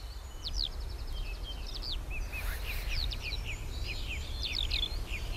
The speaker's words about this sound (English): jazzy-sounding blackbirds, cheerful twittering robins, earnest-sounding song thrushes, quickfire clear-singing wrens, tuneful sliding chaffinch, trill dunnocks, unpredictable great tits, and of course the masters of song, skylarks.